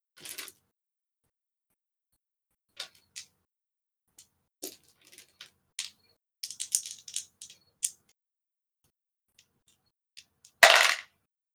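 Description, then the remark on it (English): Clicks and light plastic rattling as someone sifts through dice searching for the right ones to roll a bite attack's damage, scattered over several seconds, then a short, sharp clatter as dice are rolled near the end. No one speaks. “Where's the right dice for this?”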